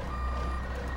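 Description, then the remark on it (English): A truck's reversing alarm sounds a loud, steady high-pitched beep over a low rumbling engine, with no voices. “back up the Brinks truck.”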